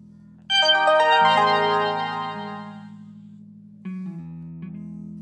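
A bright, ringing phone alert sounds once and fades slowly, then a second, softer chime follows a few seconds later, both over a steady low hum with no talking.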